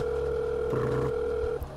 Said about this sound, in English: And from between clicking the call to when the ringing starts, it feels like it stretches out for far longer than it should.